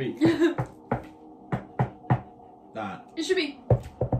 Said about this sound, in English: All right, well, let's have a special knock. I'll come back, keep the door shut. All right. I'll go like this. How about that? As a special knock. That's a good knock.